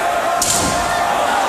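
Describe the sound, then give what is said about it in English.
A blue steel folding chair smashes into trophies, awards from the fans, with one brief, sharp crash, nearly swallowed by the constant roar of a large crowd. “Oh, he broke their trophies.”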